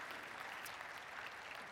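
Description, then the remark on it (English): Steady applause from an audience, a dense, even wash of many hands clapping at once with no pauses, holding at a consistent loudness throughout the short stretch. “You want to clap? You can clap.”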